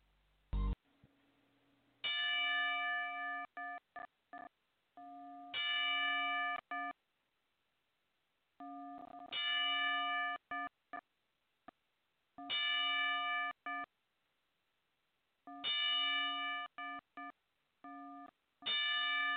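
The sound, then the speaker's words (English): A ringside bell rings out a ten-bell salute for wrestling promoter Jim Crockett, sharp metallic clangs struck in uneven clusters with short silences between, loud, with no voices present. “So we would like to take this time to have a 10-bell salute for Jim Crockett.”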